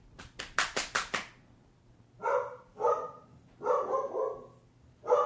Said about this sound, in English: Someone must be home. What are you barking at?